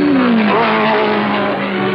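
A Porsche sports car engine revs loudly and steadily, its pitch sliding and rising as it accelerates, with a constant throaty roar filling the whole moment.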